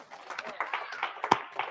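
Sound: audience hand clap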